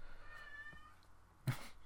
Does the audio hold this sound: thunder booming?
no